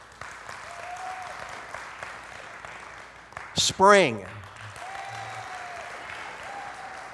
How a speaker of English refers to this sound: How many of you have a specific season that you're partial to? Okay, by clap alone, if I call your season, clap your response. Summer.